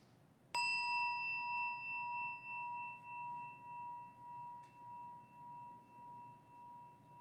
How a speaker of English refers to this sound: As we listen to the chime, let us remember our connection with each other and the world around us.